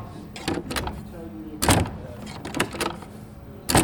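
A large sound-effects prop door being opened and shut for a noir detective play: several sharp latch clicks and rattles, a heavy thud as it closes, then more knocks and a final bang.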